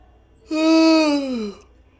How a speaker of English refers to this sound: You can't yawn.